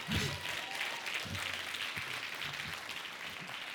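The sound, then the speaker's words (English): A crowd applauds for the people who didn't need it, many hands clapping in a dense, crackling wash of sound that holds an even loudness throughout, with a few low murmurs and shouts mixed underneath. “Clap your hands for the folk who didn't need it.”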